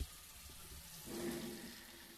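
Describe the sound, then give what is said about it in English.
A bathroom faucet runs with a steady, low splashing hiss that swells about halfway through, with faint gulping or slurping against the stream as someone drinks straight from the tap. Quiet, no talking. “I don't want to leave the bedroom, so I drank out the fucking faucet.”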